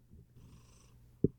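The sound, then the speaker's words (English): A cat purrs with a steady, low, rumbling vibration that continues through the whole clip, ending with a short soft thump near the end. “It's purring.”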